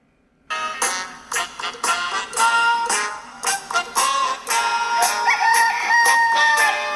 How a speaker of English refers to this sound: Their rooster is cockadooing and something's going on.